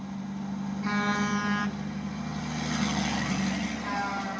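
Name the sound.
car horn honk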